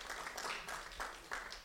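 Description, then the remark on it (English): An audience claps to vote on whether a story is fake, in a dense, steady patter of many hands, fairly soft overall with small swells in loudness, lasting under two seconds with no voices. “I think the one on the right got a louder clap, definitely.”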